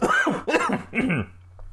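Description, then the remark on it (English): Three rapid, harsh, sputtering coughs from a man choking on his own spit, loud, trailing off into quiet afterward with no talking. “started coughing as he choked on his own spit.”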